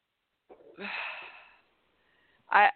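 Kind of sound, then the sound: human body sound, deep breathing exercise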